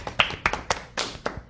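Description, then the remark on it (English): Hands clapping in a quick, uneven burst of sharp slaps, moderately loud, like a few people applauding briefly with no talking over it. “Clap it up, clap it up.”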